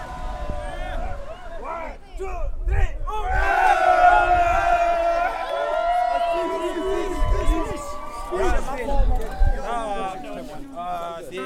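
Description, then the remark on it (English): A crowd at the Tibetan restaurant Om Walk cheers and shouts together as the owner gives his winning speech in Tibetan: a loud sustained roar of many voices with rising whoops, mixed with overlapping talk and babble throughout. “People walk to the restaurant and cheer as the owner gives his winning speech in Tibetan.”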